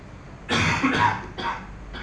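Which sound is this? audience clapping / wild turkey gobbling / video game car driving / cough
cough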